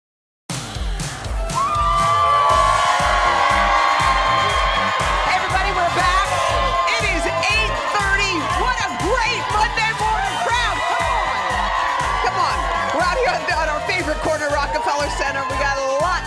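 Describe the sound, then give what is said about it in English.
A big Monday crowd cheers and whoops loudly and without letup for about fifteen seconds, with rising whistles and shouts over what sounds like steady rhythmic clapping. “how does this crowd sizing up?”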